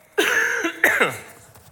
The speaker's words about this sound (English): I'm going to cough again. Hold on.